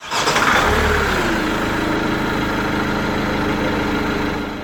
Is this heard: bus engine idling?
yes